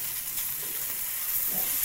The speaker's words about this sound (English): Oh my god, can you finish browning the chicken? Finish browning the chicken. I'm browning, bro. Do we need more oil?